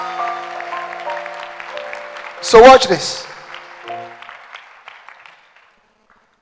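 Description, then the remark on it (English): An audience claps hands together for the Lord Jesus Christ in a dense, steady patter that swells into a loud burst midway, then fades out, with a voice speaking briefly over it and a sustained tone underneath. “Give the Lord Jesus Christ a wonderful clap of hand.”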